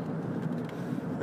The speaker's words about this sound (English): So there, my wife's making me punch it past the other car.